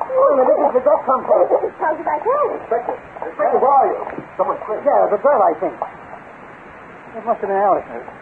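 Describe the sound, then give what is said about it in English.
A dog barks repeatedly upstairs in short, fairly loud bursts, with a muffled, narrow-band sound like an old radio broadcast; brief pauses separate the bark clusters. “Where did the dog come from?”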